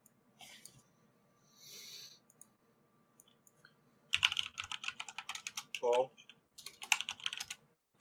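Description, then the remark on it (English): Rapid clattering of keys on a computer keyboard comes in busy bursts after a few quiet seconds, briefly interrupted by a single spoken word before the typing resumes. “We gotta limit the typing.”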